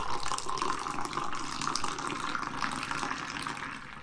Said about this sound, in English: Oh yeah, just go ahead and pour that in there, the legendary pour. Yeah, give it some hype, there you go.